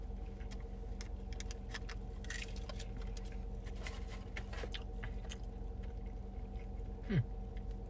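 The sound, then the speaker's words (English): Someone chews a chicken sandwich dipped in honey mustard sauce: soft, irregular crunchy clicks and smacks over a steady low hum, with a brief low murmur near the end. “I am going to try this sandwich in this honey mustard here.”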